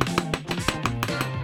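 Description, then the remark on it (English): A hammer strikes in a quick, steady rhythm, about nine sharp hits in a row, with a sustained musical tone playing underneath. “Tool call. Hammer.”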